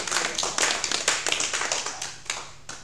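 A crowd claps steadily to give praise to the Lord, many hands producing a dense, bright patter of overlapping claps with sharper individual strikes standing out, continuing without voices for the whole stretch.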